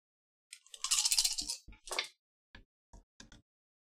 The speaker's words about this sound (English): Okay, so I'm going to make that a charm roll, and I'm going to give you plus one for the, where is that written down on your character? Wrangler. For the Wrangler stunt. Give me a roll of five dice.